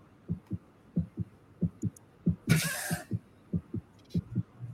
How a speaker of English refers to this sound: At the end of the heartbeat, when it has a heart attack, that's how long you have.